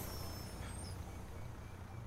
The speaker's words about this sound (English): Back in June, the bus rolls up. The door is closed.